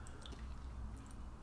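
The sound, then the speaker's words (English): Quiet chewing of soggy Frosties frosted cornflake cereal: soft, wet, squishy mouth sounds with no crunch, continuing steadily through the short moment with no talking. “Now, if you've got sharp ears, you'll notice the crunch element has completely subsided.”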